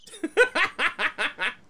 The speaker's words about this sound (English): Was there a duck at the end of the that cricket beer? Mr. Ducksworth. Was that you? That was a duck sound bite.